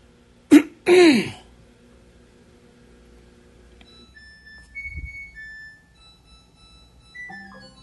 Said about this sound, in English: Your washer is done. Now, I hope you heard that.